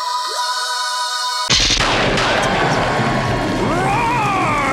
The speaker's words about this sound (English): Your ludicrous speed round, and roar is the sound of a time-displaced T-Rex as seen in this week's issue of Infinite Loop number 1.